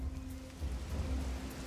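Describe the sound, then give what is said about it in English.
Steady light rain patters softly outside in humid air, a gentle continuous hiss with a low rumbling undertone and no voices. “Meanwhile, outside, as the rain has settled down, you're both just sat there, kind of tired, dozing off slightly, because while it's raining, it's still quite humid”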